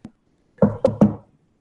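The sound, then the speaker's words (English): A faint tap, then three quick, solid knocks on a door in fairly close succession, heard alone with no talking. “Was that a rapping at our very door?”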